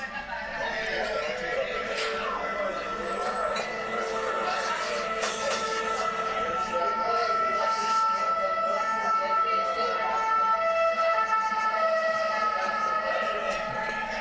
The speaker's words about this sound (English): I told you they were doing pam pam pam pam pam. So, but is that real? Actually, I think it was added. It was. Did we see if the ambulance was? No, the ambulance was real.